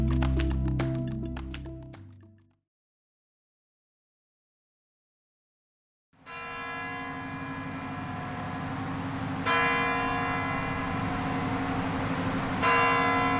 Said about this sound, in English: So at 10 a.m. on the dot, the clocks around Red Square chime.